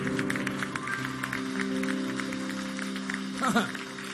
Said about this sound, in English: Please clap your hands, it's free.